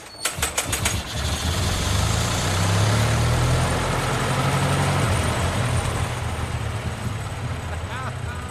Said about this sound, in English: your winding handle won't keep going on once the engine gets cranking. So I recommend just about 3 o'clock. So you push the handle in, keep it pushing it, and then start winding.